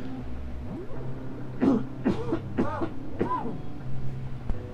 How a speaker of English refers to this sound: Allergy cough again.